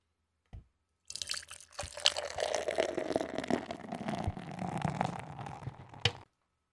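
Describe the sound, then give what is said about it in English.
A short click, then about five seconds of steady liquid pouring and gurgling as a hazy, light amber-yellow Modern Times beer with oats is poured into a glass, fairly loud, ending with a soft clink. No one speaks. “Let's get with the pour.”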